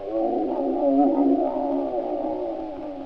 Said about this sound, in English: There was a polar bear who growled like this.